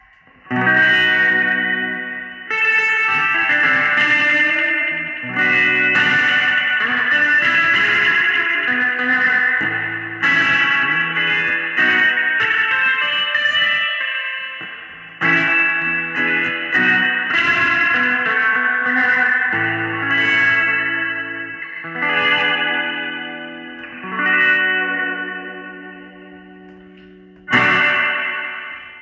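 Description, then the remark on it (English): Overdriven electric guitar played through a Zoom pedal in its 63 Spring reverb mode, overdriving the amp; chords ring out into a thick, splashy wash of echo with a gritty, trashy edge, sustained loudly with brief gaps between phrases. “Overdriving the amp, and it kind of gets this trashy sound, but man, it's just such a wash of reverb coming from that.”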